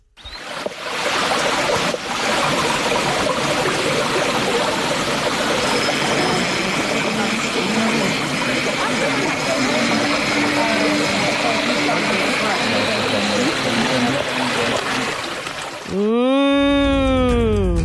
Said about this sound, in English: All I heard was a bee flying by, okay?